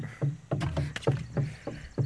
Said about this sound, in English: I'm knocking on wood.